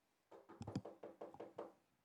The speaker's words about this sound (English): Which means I have a knock on my door now.